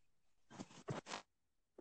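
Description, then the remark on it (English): Keyboard typing while writing a reflection paper for school: a few quick, clattery bursts of keystrokes close together, then a pause and one more short burst at the end. Fairly quiet, with no talking. “Could I hear that? Yeah, a little typing action.”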